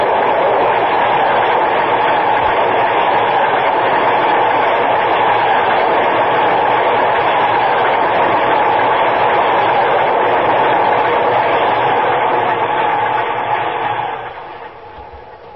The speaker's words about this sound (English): Downtown Express. You see him? There he is, across the tracks. Get out of the way. Watch the train.